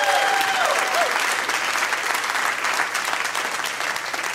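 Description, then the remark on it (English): An audience bursts into a loud, dense round of applause for a gentleman in the audience, steady clapping that holds for several seconds before easing off slightly at the end. “Round of applause for that gentleman.”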